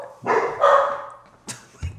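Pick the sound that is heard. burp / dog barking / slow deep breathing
dog barking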